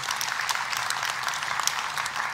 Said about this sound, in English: I'm going to pretend that's applause for me and feel good about it.